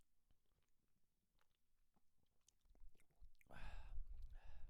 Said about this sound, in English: All right. I'm having a sip.